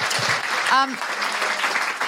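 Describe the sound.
An audience claps steadily, giving a big round of applause for a guest at the end of a discussion, a dense, even wash of applause for about two seconds, with a brief voiced shout or cheer rising above it partway through.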